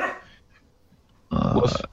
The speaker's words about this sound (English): My dog just barked. I don't know, figure out why.